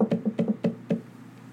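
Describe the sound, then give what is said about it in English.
A quick series of about seven knocks on a wooden chamber door, fairly loud, falling in loose irregular pairs before stopping, with no voices. “Rapping on my chamber rapping door.”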